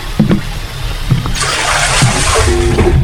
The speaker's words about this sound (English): Why is that waterfall flowing into the sky and shit?